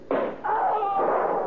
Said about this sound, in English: Hey, sounds like that thunder's getting lots closer, eh? Hey, did you see that flash of lightning? Yeah, plenty close, too.